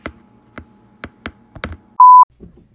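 A single loud, steady electronic notification beep, short and clean, comes after a few scattered soft taps and clicks, with faint muffled knocks just after it.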